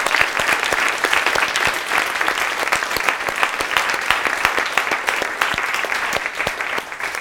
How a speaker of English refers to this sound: So with that said, I want a big round of applause for everybody who shared with us tonight.